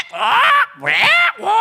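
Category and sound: bird, parrot squawking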